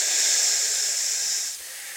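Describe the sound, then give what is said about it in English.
A steady, bright hiss of smoke being released, loud and continuous for about a second and a half before dropping off to a softer lingering hiss. “Then you see and hear around you the hiss of smoke being released.”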